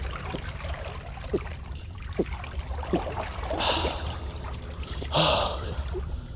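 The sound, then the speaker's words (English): Quiet slurping sips of water from an underground pool, a few short wet sounds, followed by a loud breathy gasp of relief. A faint trickling or background hum runs underneath, with no talking. “That is the best tasting water I've ever had. Like the earth is in every sip.”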